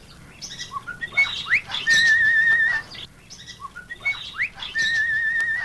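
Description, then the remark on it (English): A cockatiel named Cleopatra, from Australia, whistles the first part of Caprice Viennois: a short melodic phrase of clear, sliding notes ending in a long held tone, then repeats it. The whistling is fairly loud and alone. “Cockatiels make fine talkers and excellent whistlers.”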